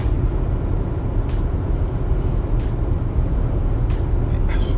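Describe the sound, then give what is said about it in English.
A car cruising along a highway on a two-hour trip: a steady, loud rumble of engine and road noise with constant hiss, broken by a few brief sharper swishes and clicks. Nobody speaks. “like I said, I'm driving down this highway, doing a 2-hour trip.”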